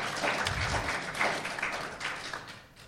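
A small audience applauds steadily, a dense patter of many hands clapping at once that stays fairly even in loudness before tapering slightly at the end.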